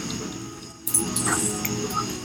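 Upset dogs whimper and let out short, high yips, a couple of brief squeaky cries over a low background rumble.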